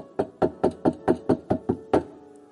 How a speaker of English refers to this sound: Behold, I'm standing at the door of your heart and I'm knocking.